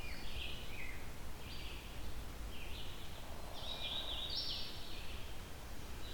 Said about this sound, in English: This is a bird where it might be unlikely for me to actually see it. Too many leaves, too big of a forest. It's a loud bird, so it may not be all that close to me.